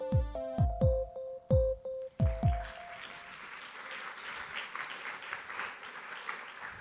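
A few booming, ringing musical notes give way to an audience clapping, a dense, steady patter of applause that holds at a moderate level until the end, with no voices.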